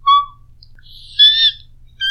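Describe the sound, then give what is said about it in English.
A person imitates bird calls with three short, fairly loud whistling squawks, one at the start, a longer warbling one in the middle, and another at the end, with quiet gaps between. “Yeah, just gonna make bird noises.”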